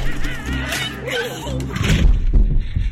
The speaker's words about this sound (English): Find whatever you can to board up this door. They keep pounding like this and the hinges are gonna go.